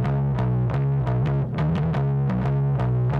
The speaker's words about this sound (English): Very, very fuzzy bass. Fuzzy bass? Yeah, so it's a fuzz... You know the fuzz effect on guitar? Nope. It's a guitar effect. It's not distortion, it's fuzz.